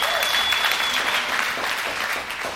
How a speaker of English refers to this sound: That's awesome. Yeah, man, clap for that. That's super cool.